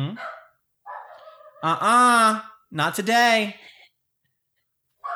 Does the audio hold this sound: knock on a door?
no